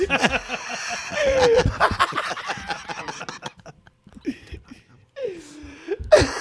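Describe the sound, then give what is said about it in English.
A man's strained, gasping breaths and choked vocal sounds, loud, coming in uneven bursts with short pauses, ending in a sharp high wheeze. “Every time he tried to breathe, he gasped.”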